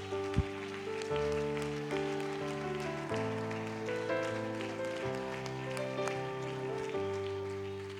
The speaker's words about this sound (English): Come on, clap to your hands. Stand to your feet if you would right now.